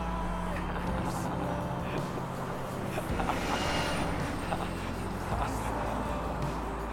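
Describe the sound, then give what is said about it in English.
A city bus driven by a woman rumbles along a street, its low engine drone steady and loud for several seconds amid general traffic noise, with faint voices in the background. “That's that bus driver right there.”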